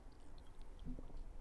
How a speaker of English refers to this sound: I'm going to take a sip of my Prosecco.